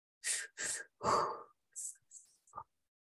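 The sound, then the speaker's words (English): Several close, deep breaths blown right into a microphone: two quick huffs, a longer rushing exhale, then a few softer, shorter puffs trailing off, with no talking. “I don't know why, but the computer, must be the computer audio, it kind of doesn't pick up on the breathing.”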